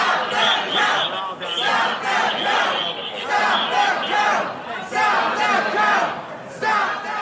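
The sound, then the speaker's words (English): A crowd of protesters in Detroit, Michigan, who want vote counting to stop, chants "Stop the count" in loud, repeated rhythmic bursts, many voices shouting together with brief dips between each chant. “What you're hearing there actually is protesters in Detroit, Michigan, yelling out, "Stop the count."”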